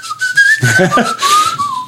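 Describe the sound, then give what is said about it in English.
A person whistles a short melodic tune, the pitch gliding up and down in a clear tone, with a brief breathy vocal sound partway through. “I'm a whistler. I'm always going like...”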